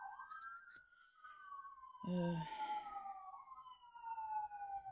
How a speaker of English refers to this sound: Man, there have been a lot of sirens lately. I think Thanksgiving, I counted maybe like five yesterday while I was in a meeting. There were like two, maybe three, I don't know. This is the f I think this is the first one I'm hearing this morning.